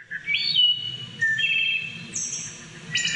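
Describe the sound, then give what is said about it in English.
A wood thrush sings clear, flute-like whistled phrases, several overlapping liquid notes rising and trilling in sequence, loud over a soft, low background rumble. “The song of the wood thrush is sung in the dim light of the early morning and in twilight's quiet hours.”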